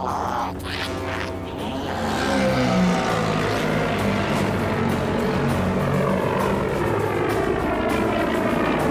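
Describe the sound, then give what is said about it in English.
The engine of the starship Slave One rumbles loudly and continuously, a dense throbbing drone with warbling, shifting tones that swell slightly after the first couple of seconds and hold steady, with no voices present. “So obviously you know the distinctive engine sounds of Slave One by now.”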